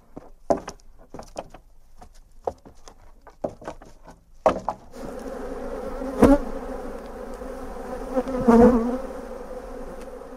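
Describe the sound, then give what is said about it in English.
A few scattered knocks and taps, then a dense, steady buzzing of many honeybees from kept colonies swells in and hums continuously to the end, with a couple of louder surges. “Well, we started keeping a couple just ourselves for the honey, but bees have a way of multiplying, and we have 7 colonies now”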